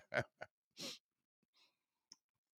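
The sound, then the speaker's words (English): A sip of water: a couple of quick wet mouth clicks, a short breathy rush of air, then faint swallowing noises and one last small click, with no talking. “As he pauses for a sip of water.”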